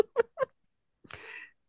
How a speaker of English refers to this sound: My cat. About? He's trying to get up. That was Herb. Herb.